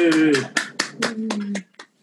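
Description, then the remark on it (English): A handful of unmuted participants on a video call clap for the readers at a writing group's reading for the Rainforest Festival, in a loose, uneven rhythm over about two seconds, with voices calling out underneath before the clapping thins to a few last claps. “Round of applause for everybody who read.”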